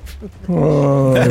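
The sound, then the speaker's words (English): A voice imitates ghostly, disappointed moans: a low, drawn-out moan, one sustained tone that slides slightly downward in pitch and holds loudly to the end after a brief quieter start. “You hear those disappointed moans”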